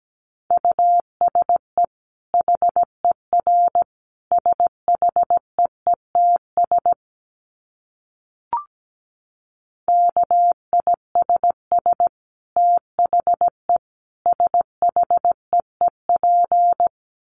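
A steady, mid-pitched tone keys on and off in quick Morse code patterns of short and long beeps at 17 words per minute, with a brief pause and a single click near the middle before the sending resumes.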